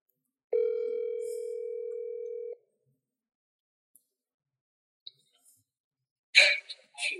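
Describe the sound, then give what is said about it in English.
A single steady electronic ringback tone sounds for about two seconds on an outgoing phone call, followed by a long quiet pause before voices briefly start talking at the end. “Get … on the phone, man. Let's hopefully he answers.”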